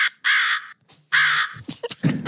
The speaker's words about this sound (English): What, it's a crow? That's scary.